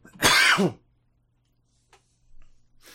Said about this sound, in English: Cough.